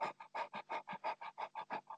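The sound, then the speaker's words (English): A person imitates a dog panting: quick, breathy huffs repeat about six times a second in a steady rhythm, moderately loud, with no talking. “and even practice panting, or um, not a, not panting the way that a dog does, because we humans can't even breathe that fast.”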